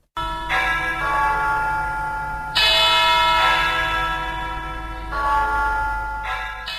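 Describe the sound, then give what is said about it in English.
Large church bells at Our Lady of Victory's Cathedral in Yaounde ring out in overlapping peals, inviting Christians to the first mass, with fresh strikes every couple of seconds and long resonant tones hanging over a steady low hum. No voices are heard. “Church bells ring at the Our Lady of Victory's Cathedral in Yaounde, inviting Christians for the first mass to be said by Jean Mbarga, the Metropolitan Archbishop.”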